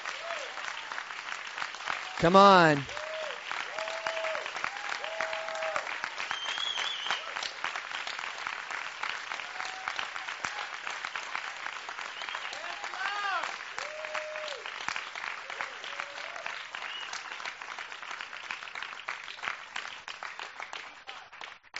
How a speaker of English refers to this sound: And 17 years in Tunisia. 17 years in Tunisia. I think we should clap for that. 17 years in Tunisia.